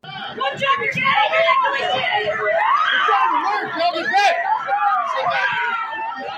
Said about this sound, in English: Some parents screaming at officers to do more, to do anything, while others had to be held back from rushing inside themselves.